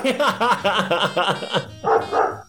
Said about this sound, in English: Wow. This neighborhood. It's all the time. It's like this. There's dogs just everywhere. Like, next door, there's, like, 7 dogs. Jeez. It's insane. Like, I think only dogs live there, maybe.